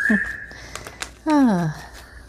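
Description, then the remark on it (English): A pet bird whistles: a thin steady high note, a few faint chirps, then one loud, harmonically rich whistle that slides downward before fading out. “is in the background, chirping.”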